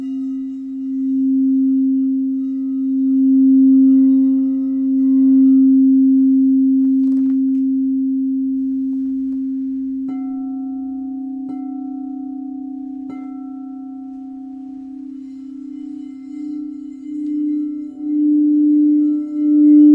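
A singing bowl tuned to the root chakra hums steadily for the whole stretch, a sustained low ringing pitch with shimmering overtones, lightly re-struck a few times so new higher partials bloom and fade.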